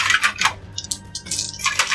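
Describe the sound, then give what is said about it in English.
A handful of dice is grabbed and clatters and rattles, several bright clicking bursts knocking together in quick, irregular succession with no talking. “So I'll grab some random dice.”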